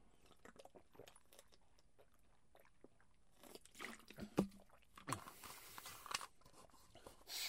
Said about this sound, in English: Let me get some water real quick.